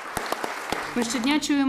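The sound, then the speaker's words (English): A standing ovation in a UK parliamentary committee room for Ukraine's First Lady Olena Zelenska as she enters to deliver her speech winds down to a handful of scattered, sharp claps over the first second, then a woman's voice begins speaking as the clapping stops. “She received a standing ovation as she entered a parliamentary committee room to deliver her speech.”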